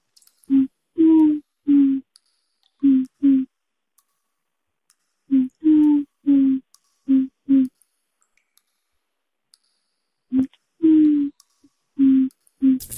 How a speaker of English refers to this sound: There's owls. They're coming. Oh, fuck. Holy shit. Oh boy. They're here. They're coming to Brooklyn.